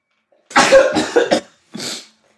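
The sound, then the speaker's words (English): A loud, forceful sneeze erupts in several harsh, breathy bursts, followed after a brief pause by one shorter rough exhale. No talking. “Oh, hold on one second. I'm gonna sneeze.”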